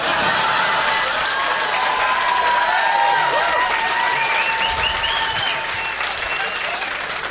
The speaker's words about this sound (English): Oh, is that what the standing applause was for, bitch?